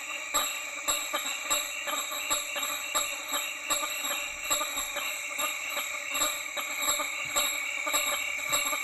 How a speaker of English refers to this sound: So when I say honk, you probably kind of think of it as like a goose honk, but the bat honking sounds a lot more like an alien abduction than like a car honk or a goose honk. So take a listen to this, you guys.